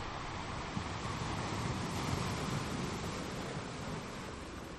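A steady, soft wash of small, gentle ocean waves lapping at the water's edge, a continuous hiss of water with no distinct breaks, heard alone without any voices at an even, moderate level.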